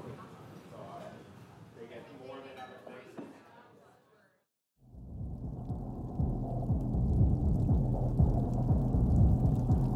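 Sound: rain falling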